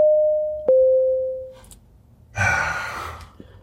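A steady, mid-pitched electronic beep holds for over a second, dropping slightly in pitch with a click partway through, then fades; after a short pause comes a loud breathy exhale.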